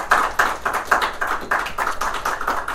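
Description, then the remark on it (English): A short round of applause from an audience at the National Comedy Center in Jamestown, New York, for featured guest Caroline Hirsch, a steady stream of brisk claps with slightly pulsing emphasis, holding fairly even in loudness for about three seconds with no voices over it. “So let's have a round of applause for our featured guest.”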